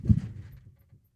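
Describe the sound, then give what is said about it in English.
A voice imitates a gunshot: one short, punchy burst with a heavy low thump that quickly trails off into a soft rumble, followed by a faint small pop. “You hear right, fucking that, gunshot.”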